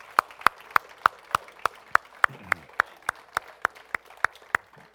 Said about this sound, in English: Would you give the Lord a big clap and thank him?